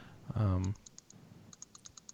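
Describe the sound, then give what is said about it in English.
A brief voiced sound, then a pen clicking in two quick runs of small, crisp clicks, about eight in all, fairly quiet against a near-silent background. “someone's clicking. Who's clicking? Oh, sorry, that was me. That was my pen.”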